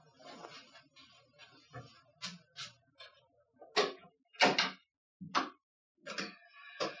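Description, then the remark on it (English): Someone knocks on a door on Christmas Eve in a series of sharp, hollow raps, unevenly spaced over several seconds, a few louder than the rest, with no voices present. “Someone's knocking on the door.”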